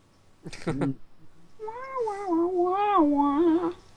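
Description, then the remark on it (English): A voice imitates a saxophone: a short vocal burst, then a sustained, wavering humming tone lasting about two seconds, sliding up and down in pitch, fairly loud and alone. “Yeah, that's my saxophone impression.”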